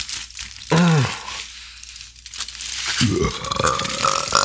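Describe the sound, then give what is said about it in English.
Two loud burps, one short and one drawn out and gurgling, with crinkling aluminum foil rustling and mouth smacking in the background. “I'm going to call it burping and smacking.”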